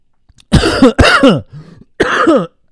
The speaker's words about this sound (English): Excuse me. No cough button.